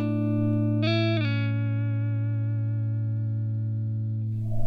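Electric guitar demo played dry, with the reverb switched off: a brief brighter chord near the start, then a steady sustained note ringing loud, with no talk over it.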